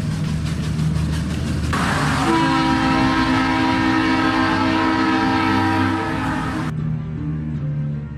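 A train horn blares in a long, loud sustained blast over the rumble of a passing train, then cuts off abruptly, leaving the rolling rail noise. No one speaks.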